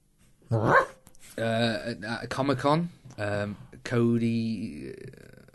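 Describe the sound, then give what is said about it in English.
A man mimics a dog with a string of about five loud vocal barks and yelps, some short and some drawn out into a whining howl, with no other sounds around him. “He acts like a dog.”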